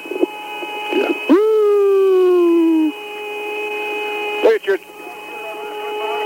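Eerie, spacey electronic music heard in an unedited recording of astronaut Young in the command module, with a sustained whistling tone that swoops in and slowly slides downward in pitch, over steady humming drones, broken by a couple of brief crackly bursts.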